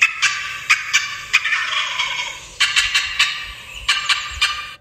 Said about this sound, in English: It's called a cut. C-U-T-T, a loud, sharp clucks that are often mixed with yelping. Cutting is a sign that turkeys are excited, not alarmed.